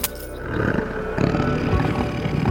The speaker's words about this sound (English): A tiger's on the loose, but Chuck has no idea, until he feels something right behind him.